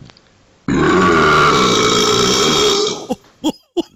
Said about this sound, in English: And this one, once again, we all do this. But most of us are kind enough not to do it in a restaurant, in public, loudly. Burping. Let's play this guy. He goes deep for this one.